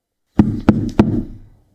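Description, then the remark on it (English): Three heavy bangs on a wooden door in quick, even succession, loud, each thud ringing briefly before fading out. “Max! I called, banging on the door.”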